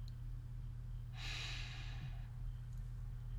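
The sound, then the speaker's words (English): A single deep, airy breath rushes for about a second during a guided breathing exercise, then fades, leaving a steady low hum in the background. “Breathing in, holding, and exhale.”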